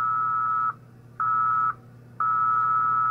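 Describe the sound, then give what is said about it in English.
Very slow QRSS Morse code at about half a word per minute, sending the call sign W5KUB: a steady, mid-high pure tone switches on and off in long, even pulses, three sustained beeps separated by short gaps, with a faint low hum underneath and no talking. “If you listen, that is very slow Morse code.”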